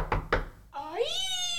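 Two quick dull knocks, then a long, drawn-out creak that bends in pitch and holds steady as a door slowly swings open, fairly loud with no talking.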